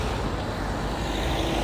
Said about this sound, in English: It's really busy on the road this morning.